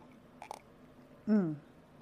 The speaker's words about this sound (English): But something I want to mention, and let me get a little tea sip in here. My throat's being funny.